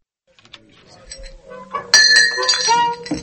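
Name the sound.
drinking glass clinking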